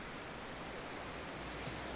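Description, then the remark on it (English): A steady, hissing wash of ocean surf at Brighton Beach, even and continuous without distinct wave crashes, fairly soft and heard alone with no voices. “So not long after going out to record the Brighton Beach surf”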